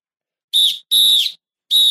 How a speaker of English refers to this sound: Blow the whistle. Blow the whistle. Blow the whistle. Blow the whistle.